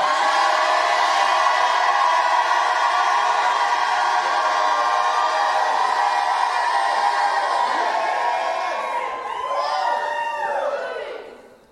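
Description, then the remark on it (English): A large audience at a religious service shouts and cheers loudly and continuously when called on to shout, a dense roar of voices that holds steady for several seconds, then rises into scattered whoops and yells before fading out. “Somebody shout like you've never shouted.”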